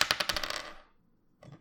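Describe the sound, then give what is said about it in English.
Dice clatter and rattle across a hard table in a quick burst of sharp clicks, then settle into silence with a roll of 10, before a soft shuffle near the end. “I got a 10 on the dice.”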